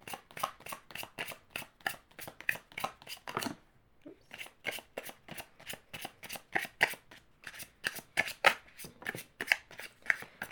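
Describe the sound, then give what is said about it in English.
A deck of cards is shuffled in quick, crisp riffling bursts to draw cards for advice in a card reading, pausing briefly midway before the rapid flicking resumes, with no voices present. “I'm literally shuffling that way in order for the cards to be able to fall out as they need.”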